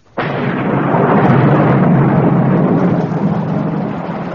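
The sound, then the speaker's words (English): A loud, sustained rumble of thunder, a storm sound effect, kicks in abruptly and rolls on steadily over a broad noisy wash of rain, with no voices over it. “Oh, Lord, sir, we're going to be drenched.”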